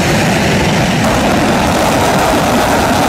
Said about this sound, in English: That's the MiG-17. Okay. Yeah, that's throwing the afterburner on.